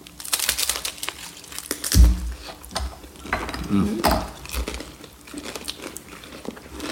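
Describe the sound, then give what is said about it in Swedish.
A crunchy bite into SOS, eaten with aquavit, followed by loud chewing, with irregular crackling crunches continuing over several seconds. “Vi tar ett lite knaprigt baj.”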